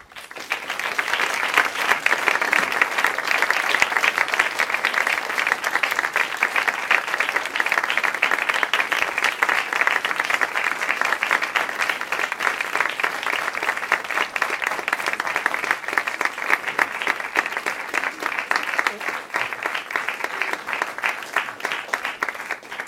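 An audience claps steadily for over twenty seconds after a philosophy lecture, a dense, even wash of many hands that stays fairly loud throughout, with no voices rising above it.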